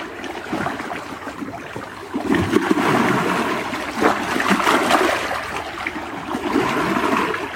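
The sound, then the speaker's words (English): Steady rushing and burbling of flowing stream water on a warm autumn day, continuous, swelling slightly louder partway through with bright splashy texture; no voices present. “And water that's alive.”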